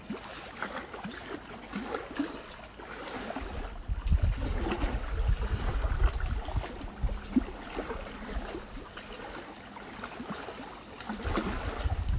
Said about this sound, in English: And then the sound of waves at night.